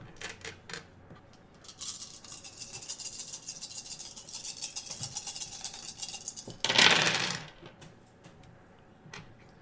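Several dice rattle and clatter across a hard surface, a busy run of small clicks and tumbles building to a louder burst near the end before settling.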